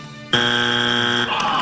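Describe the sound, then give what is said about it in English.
A game show wrong-answer buzzer blares once after a wrong guess in a round on America's favorite pizza toppings, a loud, harsh, steady low-pitched buzz lasting about a second, with no talking over it and some fainter tonal sound on either side. “Is it a stretch that you're about to hear the buzz here?”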